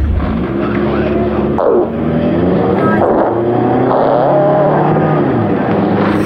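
A car engine revs loudly and steadily, its pitch climbing and dropping through several surges over a continuous rumbling drone, with no voices. Someone other than the recordist is driving the car.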